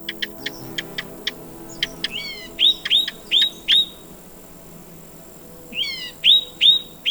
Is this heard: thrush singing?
yes